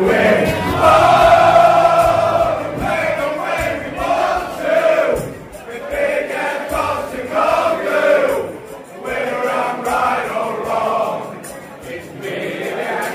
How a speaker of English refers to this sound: But then the crowd, he's been there three games and the fans are writing songs like this.